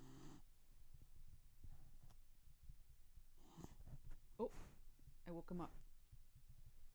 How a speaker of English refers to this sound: We were asked if we would have Puppy Corner by a listener on TikTok. So, Himbo snoring.